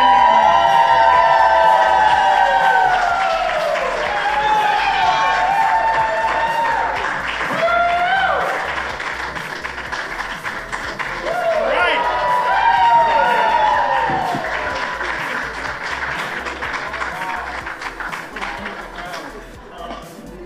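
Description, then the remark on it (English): A live audience applauds and cheers loudly for about twenty seconds as two hosts are welcomed, with shrill whoops and shouted voices rising over steady clapping that gradually thins toward the end. “I like that applause. Let me hear that applause again.”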